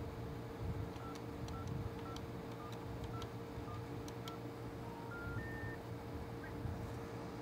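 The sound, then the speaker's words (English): A quick run of short telephone keypad dialing beeps, about eight presses in an uneven rhythm, followed by a few longer steady tones, played through a telephone audio circuit being tested, all over a constant low hum with no talking. “So hopefully you can hear that and then some numbers.”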